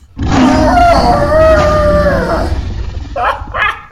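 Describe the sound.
A person's voice mimics the roar of a two-mouthed Liberty flesh mech in a role-playing game, a loud, drawn-out howling growl lasting a couple of seconds, trailing into a few rough, breathy snarls.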